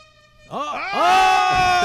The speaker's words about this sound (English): The air horn is still alive too.